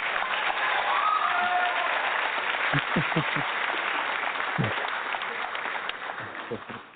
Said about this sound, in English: Oh my God, guys, who do I have in the studio tonight? Let me just give him a round of applause.